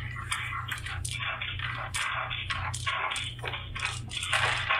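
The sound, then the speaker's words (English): A handful of dice, rolled for a chemistry skill check in a Shadowrun tabletop game and heard from across the country, clatter and rattle for several seconds, a dense run of sharp clicks and knocks over a steady low hum, with no voices. “Actual dice sound from across the country.”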